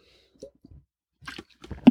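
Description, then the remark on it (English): Quiet sipping of matcha tea: a few soft wet mouth clicks and slurps, then a louder gulping swallow near the end, with no talking. “Did take another sip here of matcha tea.”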